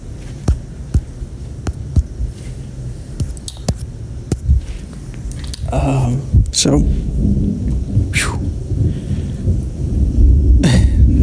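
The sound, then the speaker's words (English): Deep rumbling thunder rolls on through steady rain at night, with sharp crackling bursts and swells that build louder toward the end. “As you can hear, probably, there's a lot of thunder in the area that I'm in right now, which definitely makes for an interesting night so far.”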